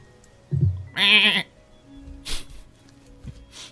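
A sheep gives one loud bleat lasting about half a second, preceded by a low grunt and followed by quieter scattered rustles and faint bleats.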